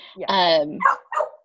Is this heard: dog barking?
yes